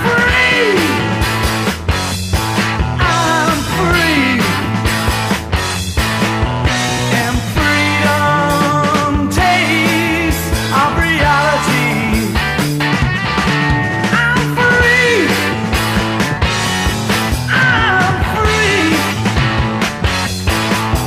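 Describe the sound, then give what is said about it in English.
Loud rock band music plays continuously, with a male singer belting and screaming high, strained vocal lines over driving guitars and drums. “Suddenly hear him scream,”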